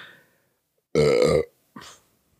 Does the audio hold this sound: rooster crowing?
no